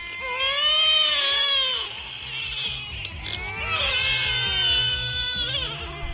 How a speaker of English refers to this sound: Okay, we're down to the top 3. At number 3, we had the sound of lots of babies screaming all at once.